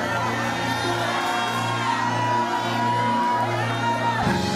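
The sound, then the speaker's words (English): A large audience shouts, cheers and whoops together in a sustained, loud roar, giving God a shout of praise during a worship service, with a low steady hum underneath and no break for the full few seconds. “A shout. Come on, come on, come on.”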